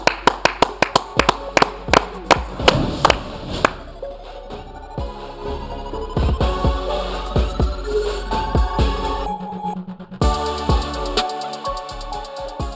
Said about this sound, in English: You the man. Clap it up. Clap it up.